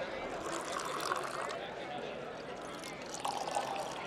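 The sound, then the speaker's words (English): Organizers of a tap water tasting competition pour water from heavy bottles into stemmed glasses twice in short bursts, a gurgling, rising splash, over a steady murmur of background noise and indistinct voices. “The organizers pour water from heavy bottles into stemmed glasses before handing samples from cities large and small to each of the judges, who are grading them on a scale of 1 to 10.”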